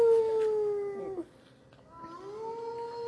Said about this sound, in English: A wolf. Everybody knows that one, of course. Or a whale? That's a wolf. That's a wolf. A wolf.